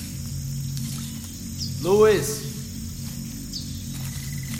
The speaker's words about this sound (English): Stupid fucking jungle, these fucking mosquitoes.